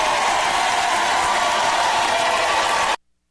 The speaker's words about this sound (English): So I've never heard a round of applause for lie detector test.